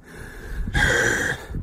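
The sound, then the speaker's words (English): A man breathes heavily through his mouth: a rough inhale followed by a long, loud, slightly whistling breath, with no talking. “And just so you know, when you're listening to this on audio, this is not us breathing heavy.”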